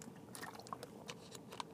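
sipping water

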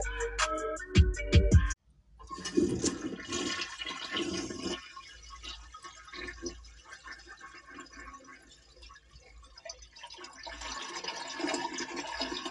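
toilet flushing

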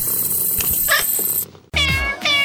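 cat purring

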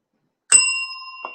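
bell rung twice

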